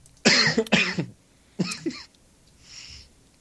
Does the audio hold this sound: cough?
yes